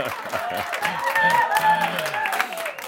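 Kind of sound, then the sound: crowd, audience applause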